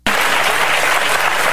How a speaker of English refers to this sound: Yes, clap away, SEALs.